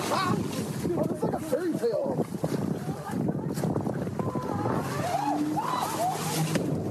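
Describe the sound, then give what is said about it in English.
A motorboat roars steadily as it zooms toward a dock after its driver hit the gas by mistake, its engine and rushing wind filling the whole stretch, with voices shouting faintly underneath; no distinct impact stands out at the end. “And hers zooms towards the dock.”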